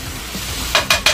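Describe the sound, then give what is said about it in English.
Steak seasoned with salt, pepper and Montreal seasoning sizzles steadily on a hot griddle with hot peppers, while three quick metallic scrapes chop the meat up, not mincing it, in a rapid rhythm near the end, fairly loud, with no talking. “Now when you're going to the store, when you're going to the shop and you're ordering, you want to hear this. They're kind of chopping your meat up. Not mincing it.”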